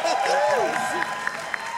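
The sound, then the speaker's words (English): An audience at a show of The Dragon Friends applauds and cheers, a dense wash of clapping with whooping voices rising and falling over it, a few sharper claps standing out toward the end. “Would you please give a big round of applause”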